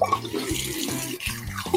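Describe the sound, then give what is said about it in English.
Tap water runs in a steady, continuous stream with faint splashing as a man washes his hands after using the toilet. It's fairly loud, and nobody speaks. “Okay, sounds like he's washing his hands.”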